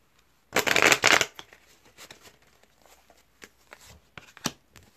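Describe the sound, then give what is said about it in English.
Tarot cards being shuffled: a loud, dense burst of riffling paper near the start, followed by softer scattered card taps and slides, with one sharp snap near the end. No voices. “All right, two more shuffle spirit. What message do you have for the collective?”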